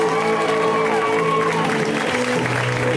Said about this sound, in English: And that is a feat you can clap for. Feat you can clap for.